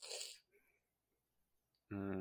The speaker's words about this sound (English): Yeah, I need to blow my nose.